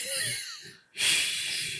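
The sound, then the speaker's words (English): A person mimics heavy, muffled breathing as if through a mask made of Jordan 1 sneaker leather: a long wheezy breath, a brief pause, then a louder, hissing breath. “I feel like and I'm gonna be sitting there, I'm gonna be like breathing mad heavy.”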